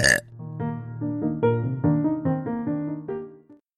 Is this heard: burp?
yes